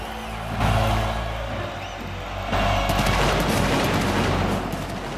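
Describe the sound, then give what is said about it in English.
A roaring wrestling crowd chants 'Goldberg' over a dense, crackling shower of pyrotechnic sparks, with two sudden loud bursts of fizzing and popping that keep the whole scene loud and busy. “You can hear the crowd chanting Goldberg as you hear the sparkles flying.”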